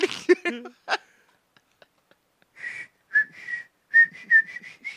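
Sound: person whistling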